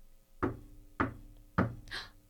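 Three solid knocks on a wooden table during a spirit-channeling session, evenly spaced about half a second apart, fairly loud, followed by a brief soft hiss in otherwise quiet surroundings.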